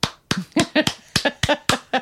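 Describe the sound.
A quick run of about nine sharp, fleshy hand claps, made as a sound effect imitating slapping bodies, fairly loud, in a loose, slightly uneven rhythm with no talking.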